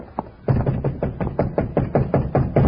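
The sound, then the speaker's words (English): Knuckles rap on a locked door in a quick, steady series of about a dozen firm, fairly loud knocks, with no voices over them. “Blotzen mit der knuckles.”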